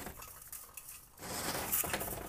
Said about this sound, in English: I'm gonna open this window.